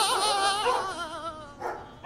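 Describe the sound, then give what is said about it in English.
Several dogs that have just been freed from cages whine and whimper together in a continuous, wavering chorus, with a few sharper yips and barks breaking through near the end; fairly loud, with no one talking. “A few of the dogs I uncaged got a bone to pick with you, dog napper.”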